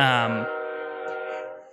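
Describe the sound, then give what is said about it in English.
A train whistle from the video game Spirit Tracks sounds as the train comes through. It is a single sustained, harmonically rich tone that starts loud and slowly fades over under two seconds, with no talking. “The Spirit Tracks train is just coming right through.”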